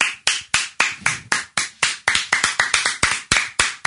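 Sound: round of applause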